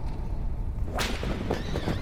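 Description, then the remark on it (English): A single sharp whip crack splits the air in a courtyard, bright and sudden, then trails into a rustling, swishing tail over a steady low rumble of heavy wheels rolling. “As I write this, I hear in the courtyard the rolling of heavy wheels and the cracking of whips.”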